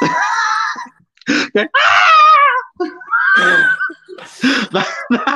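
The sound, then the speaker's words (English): A voice lets out a series of exaggerated, high-pitched frightened screams and wails, loud, broken by short gasps and breathy squeals, with no words spoken. “Well, I mean, it'll be absolutely hilarious because of the fact that you would be like, yeah, okay, like doing the comedy aspect, and you'll have me screaming like a little girl.”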